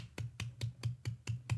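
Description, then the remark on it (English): A quick, steady run of about seven crisp finger snaps given as a round of applause for the woman from the Netflix show Bad Vegan, evenly spaced and moderately loud over a low steady hum, with no talking. “So a round of applause for her.”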